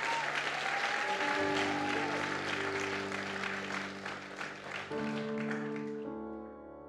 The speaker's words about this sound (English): Clap your hands if you're learning something today. Come on, clap your hands if you're learning something today.